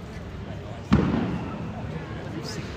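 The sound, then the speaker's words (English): A single dull boom of a firework going off outside while people queue at a dome, with a short rumbling decay over a steady backdrop of outdoor noise and murmuring voices. “We're queuing up at the dome and there's fireworks.”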